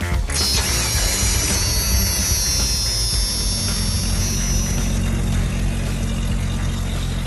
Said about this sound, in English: All right, there you go. Those car sounds are sent into the show every single week by listeners like you and maybe this guy.